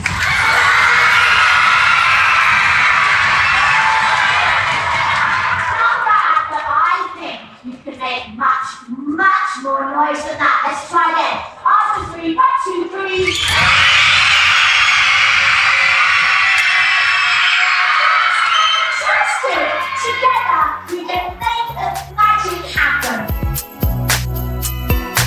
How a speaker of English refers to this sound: Every time I wave my wand like this, I want you to stand at these, clap your hands and cheer as loudly as you can. Let's have a practice. After three, one, two, three.